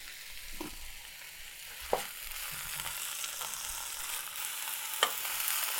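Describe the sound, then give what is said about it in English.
Thistle greens sizzle and crackle steadily as they are sautéed in a frying pan, a dense hiss with a few sharper pops and stirring clatters standing out, with no one talking. “So it seems like these ones that I'm sautéing, actually I've been sautéing and not stir-frying them.”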